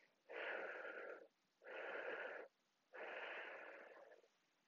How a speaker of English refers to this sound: And you will notice that you can actually take in more air than you originally envisaged. And as you breathe out, you breathe out more air. Breathing out more. More.